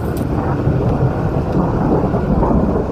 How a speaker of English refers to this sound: Sounds like it's gonna rain.